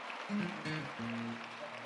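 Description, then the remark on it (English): A crowd claps together for the choir and choir directors in a dense, steady patter of applause, with low sustained tones humming underneath throughout. “Let's give our choir and the choir directors a hand clap.”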